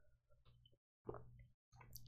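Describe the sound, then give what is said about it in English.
Quiet gulps of water being drunk, in three short bursts separated by brief silences, with wet squishy swallowing sounds and no talking. “Dude, water is so fucking good when you just are so thirsty.”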